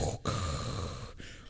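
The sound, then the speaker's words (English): A voice imitates mechanical respirator breathing: one long, raspy, hissing breath held steady, with brief pauses at each end where the breath turns over. “And a familiar noise you just starts hear to play. That Darth Vader breathing like that.”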